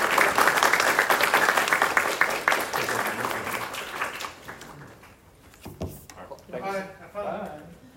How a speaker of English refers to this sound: Amazing. Round of applause.